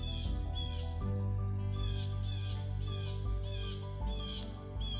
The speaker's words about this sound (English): Wow, those birds are really going at it. You guys hear that? Hang on.